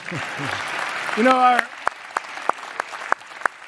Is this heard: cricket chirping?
no